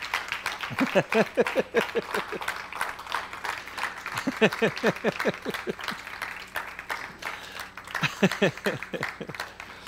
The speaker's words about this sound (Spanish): Da un aplauso al Señor en esta tarde, hermano, si puedes.